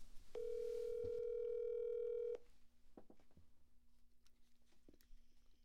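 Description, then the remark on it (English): A loud, steady telephone dial tone holds for about two seconds as a call is placed, then cuts off, leaving faint clicks and soft handling noise over a quiet background. “We should probably phone a male friend.”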